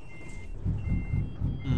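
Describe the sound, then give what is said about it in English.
A Cummins N14 diesel engine of about 550 horsepower in a W900 show truck turns over and settles into a deep, pulsing rumble, with a steady high-pitched beeping tone sounding intermittently over it. No one speaks. “I have the Lope N14 Cummins engine in here.”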